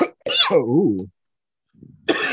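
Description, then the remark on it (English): A harsh cough bursts out and trails into a strained, wavering vocal sound, then after a short pause another rough burst starts up. “Make me cough.”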